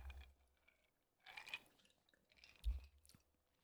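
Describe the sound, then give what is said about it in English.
Quiet sipping sounds as people take their first sips of lemonade made with very sour lemons: two or three brief wet slurps and mouth noises with short pauses between them, and nobody talking. “This should be fun to see how our non-dramatic hosts react to their first sip.”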